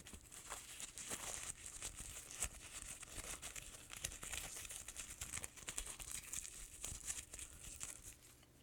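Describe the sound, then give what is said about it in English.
Crisp crinkling of a gum wrapper, a steady run of sharp rustles and crackles with no talking, lasting several seconds before easing off. “I love rapper sounds, so I don't know if you guys do, but I do.”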